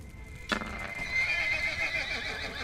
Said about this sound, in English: A flaming horse, man. Ugh. You never quite prepared for what you're gonna run into. That's an angry sounding horse. Never. Angry sounding horse.